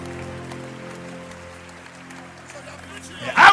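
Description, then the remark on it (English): A crowd claps steadily in a dense patter over sustained organ-like tones, with indistinct voices, and the sound swells into a loud burst right at the end. “Clap your hands for the Lord, somebody.”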